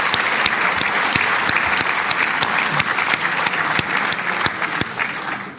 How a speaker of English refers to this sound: Can we give her a huge round of applause too? Thank you.